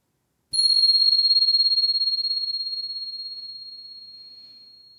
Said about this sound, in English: So just settling in again, and here comes the bell.